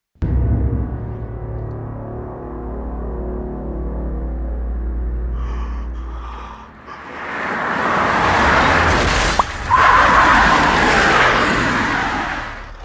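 A car engine rumbles low and steady, then a loud rush of road and tire noise builds, broken by a sharp thud as the car slams into a person. No one speaks.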